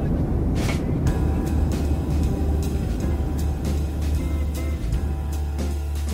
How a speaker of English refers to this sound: Finally, please remain seated as we introduce you to Wilbur and Orville, better known as the Wright brothers, as they take their first aircraft on a test run.